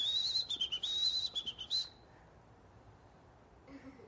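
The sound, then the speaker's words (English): A person whistles a high, warbling birdsong imitation for about two seconds, with quick trills and chirpy pitch wobbles, fairly loud, then near silence follows. “And that bird sang to him.”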